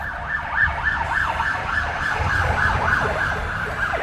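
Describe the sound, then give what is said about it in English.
A police car siren wails in rapid, repeating up-and-down sweeps, steady in volume, over a low rumble of road traffic. No one speaks. “That was a police car, listeners.”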